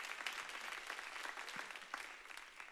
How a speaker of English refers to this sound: We had 137 people this month go through Growth Track. They're graduating out of that. Come on, let's clap our hands and welcome all of them.